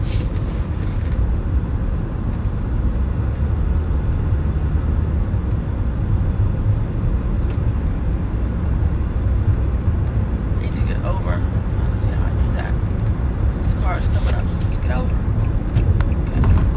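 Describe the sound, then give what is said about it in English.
A car rumbles by, a loud, steady low engine and road roar that holds throughout, with a few faint high chirps near the end. “I don't know whose car that is.”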